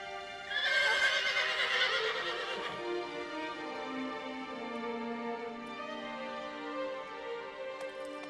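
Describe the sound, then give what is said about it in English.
The horse Aggro, lame in one leg, whinnies loudly as it comes up the stairs: a bright, shaky neigh that slides downward and trails off into a long, wavering call, with no voices present. “A horse with a lame leg comes up the stairs and I go, Aggro.”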